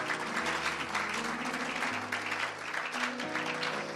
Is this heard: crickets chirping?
no